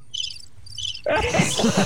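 cricket chirping sound effect

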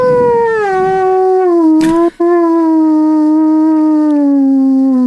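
werewolf howl

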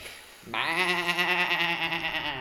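sheep bleating

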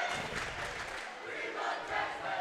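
basketball crowd cheering

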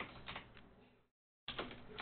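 computer keyboard typing

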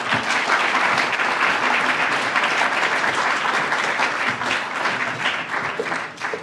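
audience applause welcoming speaker

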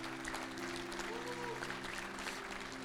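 applause

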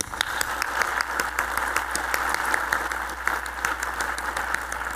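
audience clapping hands

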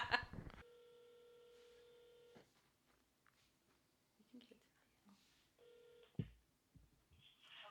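telephone call being dialed

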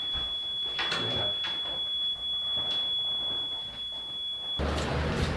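building fire alarm sounding

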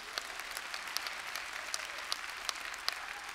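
audience clapping hands

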